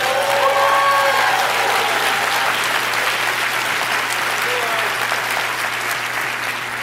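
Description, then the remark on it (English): A crowd of Christian believers claps steadily for several seconds, a dense wash of overlapping hand claps at an even loudness with a faint murmur of voices underneath. “Man, I want a better hand clap than that.”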